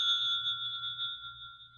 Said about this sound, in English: Your telephone, Chief Inspector. Oh, it's ringing, isn't it?